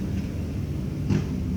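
A heavy vehicle rumbles past, a steady low drone that swells briefly into a louder, rougher roar before settling back. No one speaks.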